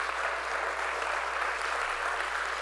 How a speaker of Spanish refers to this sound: Y la iglesia dice, si usted ha recibido la enseñanza, dale un aplauso al Señor.